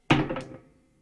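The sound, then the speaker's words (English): Dice are thrown onto a hard surface: a sharp clatter followed by a few quick, lighter rattling bounces that fade out within about half a second. No voices. “Once again, we all find out in a 3, in a 2, in a 1.”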